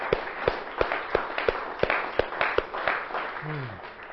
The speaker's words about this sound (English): Amen. Amen. Let's give the Lord a hand. We'll start clapping. Amen.